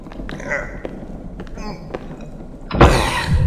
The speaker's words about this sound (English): Help me get that cabinet up against the door.